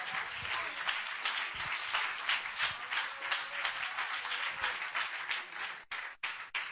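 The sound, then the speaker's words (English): A crowd applauds steadily, many hands clapping in a dense, sustained wash of sound that tapers off briefly near the end. The people are clapping their hands to God at a preacher's call. “Clap your hands to Him right now.”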